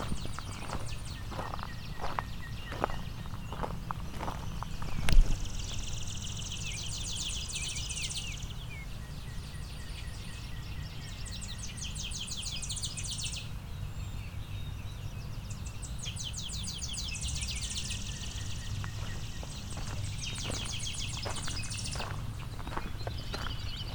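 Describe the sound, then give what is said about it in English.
Chipping sparrows give several dry, rapid, mechanical trills, each lasting a few seconds, over a steady low rumble, with some hollow clopping thuds near the start. “A lot of chipping sparrows here.”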